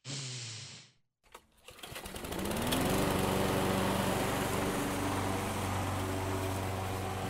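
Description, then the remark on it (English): A lawn mower engine sputters, briefly cuts out, then restarts and revs up into a steady, loud droning hum that continues without pause. “Lawnmower sound is nice.”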